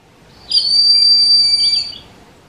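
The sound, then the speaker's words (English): A broad-winged hawk gives one thin, piercing whistled call, held steady for about a second and a half before trailing off, clear and fairly loud against a quiet background with no talking. “So the next time you're outside, you should listen for the piercing calls of breeding pairs circling high in the sky.”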